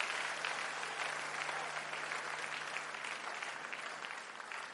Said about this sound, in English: Let's clap for them as they take their seats.